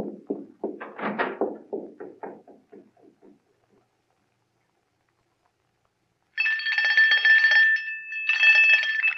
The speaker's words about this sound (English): Ring the doorbell. I'll hear it. Ring it loud.